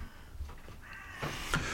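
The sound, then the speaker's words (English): Crows caw a couple of times, harsh and raspy, soft against a low background hum, with no voices. “Yeah, crows.”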